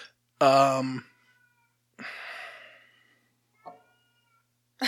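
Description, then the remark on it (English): A cat meows loudly, a sharp harmonic cry followed by a second, rougher drawn-out meow and a brief faint chirp, with silence in between. “Apparently our cat's trying to scare us.”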